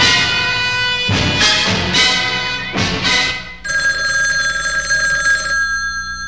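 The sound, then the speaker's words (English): A telephone rings loudly with a call from the mayor to the police commissioner, its bright metallic bell jangling in three quick bursts, then settling into a steady, sustained high-pitched ring before cutting off. No one speaks. “The mayor is on the phone.”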